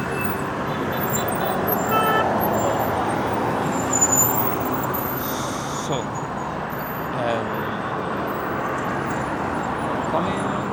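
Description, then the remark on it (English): Steady road traffic rumbles from inside a moving car on a road with no traffic lights, a dense continuous wash of engine and tyre noise with passing vehicles. A small hold-up is building up as the car crosses from one lane to the other, while a voice briefly speaks. “Small hold up is trying to build up, and am I crossing the other lane?”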